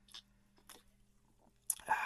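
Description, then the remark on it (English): Two quiet, short slurps from a drink, followed by a louder wet gulp and breathy exhale at the end. No one speaks. “But sit back, have your favorite drink, and everybody just take a sip right now.”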